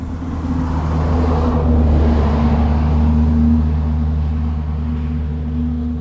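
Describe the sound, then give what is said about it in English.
A distant car engine hums low and steady on a country road just before sunset, its rumble slowly swelling as it approaches, announcing its arrival about a full minute before it passes, then easing slightly, with no voices present. “One of the amazing sounds from that evening was a distant car down the country road announcing its arrival a full minute before it passed.”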